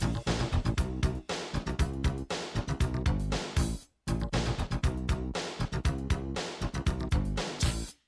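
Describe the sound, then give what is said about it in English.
A loud, upbeat pop song plays on its own, with punchy steady drums and layered bright instrumentation. It cuts out briefly for a moment midway before picking right back up. “Those are the sultry tones of one ….”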